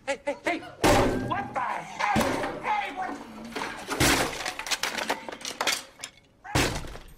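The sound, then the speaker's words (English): An acoustic guitar of someone singing a slow love song is smashed, as a reference to Animal House, in four loud blows spaced a second or two apart, each a heavy wooden crack with splintering and jangling strings ringing out between hits. “Smashing the guitar of someone singing a slowing love song was on my quintessential college experience list.”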